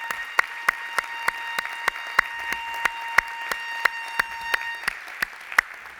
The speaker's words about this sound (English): Come on, give the Lord a great big hand clap this morning.